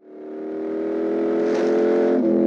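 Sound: car engine revving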